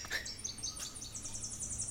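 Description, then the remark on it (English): High, buzzy songs of a golden-winged warbler repeat against a soft background hiss, each thin, insect-like phrase drawn out, with a brief sharper chirp near the start. “Biz, buzz, buzz, buzz. That's our golden-winged warbler.”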